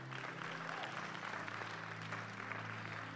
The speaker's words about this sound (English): You can clap.